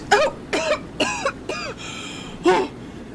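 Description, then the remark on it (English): A woman coming out of the water sputters and coughs up water in a series of five harsh, wet and strained coughs, with short gaps between them and a longer rasping cough near the end; no talking. “And as she comes kind of out of the water, she's kind of coughing everything up.”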